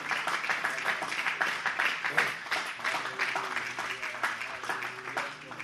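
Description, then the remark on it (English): A church audience claps their hands during a service in a dense, sustained burst of applause lasting several seconds, with a faint murmur of voices mixed underneath. “In the name of Jesus, if you believe that God has forgiven you, would you clap your hands here all over this building?”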